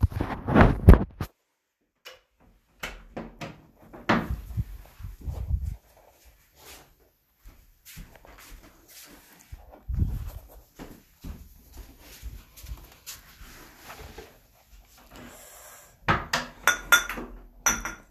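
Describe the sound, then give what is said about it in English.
Someone getting a glass of water: a series of clinks and clattering of dishes and glassware, with soft knocks and shuffling between them and a busier burst of clatter at the end. “I guess I could have just put the recording like on pause, but instead you guys are gonna wait with me while I get some water.”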